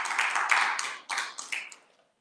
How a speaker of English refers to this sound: Let's give God one more hand clap for you. Amen.